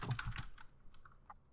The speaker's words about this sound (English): Okay, I am done typing stuff. Really? Jesus. Yeah, done typing stuff.